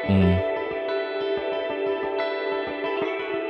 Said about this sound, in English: But then there's a distortion-y bit. Yeah. Cause it's a strange distortion, like I can hear more of like the sparkle in it than I can the string, if you know what I mean, which is why I really like it.